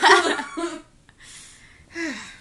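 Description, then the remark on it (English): A breathy burst of laughter breaks into a harsh cough, then a strained wheezy pause and another short cough-laugh, all from one person with no talking. “If I laugh too much, I'm coughing.”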